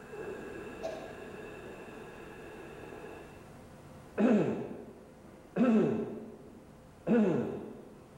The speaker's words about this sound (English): Every time you clear your throat, that's what you're doing. That's very traumatic to the vocal cords, so don't do that.